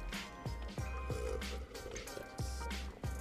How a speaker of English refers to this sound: Let's have a big ol' sip of coffee.